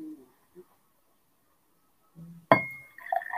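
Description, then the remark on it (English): A drink is poured into a glass, opening with a sharp glassy clink that rings briefly, followed by splashing liquid, after a couple of faint low murmurs in near silence. “Damn, I'm just gonna pour it right in my face.”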